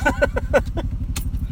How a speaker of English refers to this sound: Excuse me as I drive away on my motorcycle.